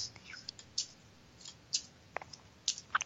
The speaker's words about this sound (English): Let's go ahead and pack up these playing cards. Just give them a quick riffle here. Yeah. And let's shuffle up these Lenormand cards.